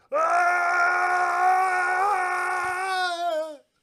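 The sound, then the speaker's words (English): A single drawn-out, low-pitched vocal wail, loud, held steadily for about three and a half seconds with a slight wavering at the end, like a voice mimicking a movie scream in slow motion. “Screams in slow motion.”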